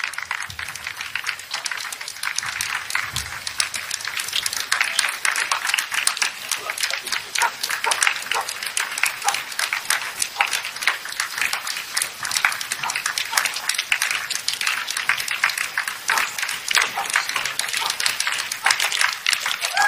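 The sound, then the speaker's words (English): A crowd applauding and cheering in a roaring welcome for Joe Biden in New Hampshire: dense rapid clapping that holds at an even, fairly loud level for the whole stretch, with a faint murmur of voices mixed underneath. “Roaring welcome for Joe Biden in New Hampshire.”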